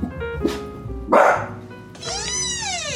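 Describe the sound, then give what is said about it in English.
A dog named Rigby, barking as someone arrives at the door, gives two sharp, loud barks in quick succession, then lets out a long, high, wavering whine, with no voices present. “Oh, someone else is here. Rigby, stop.”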